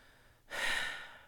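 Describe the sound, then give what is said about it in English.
A single forceful nose blow: a sudden loud, airy, rushing honk after a brief quiet moment that holds for nearly a second before tapering off. No one speaks. “I'm gonna blow my nose. Okay, I'm starting to get the sniffles.”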